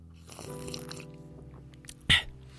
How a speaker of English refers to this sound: So we'll use fucking my mug of tea. All right, I'll take a sip of my tea.